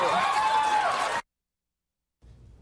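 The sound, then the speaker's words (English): An audience responding to a comment by Samantha Bee about Ivanka Trump cheers, claps and yells in a dense, loud burst for about a second, with high whoops riding over the noise, before it cuts to silence and faint low murmuring returns. “They're cheering, clapping, and yelling.”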